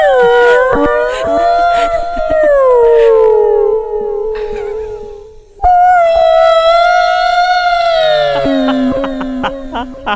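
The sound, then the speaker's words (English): A humpback whale call: long, loud, moaning tones that slide downward in pitch, then a second sustained, wavering cry with rich harmonics, heard alone without any talking. “what's crazy is I have one of the humpback whales with us right now.”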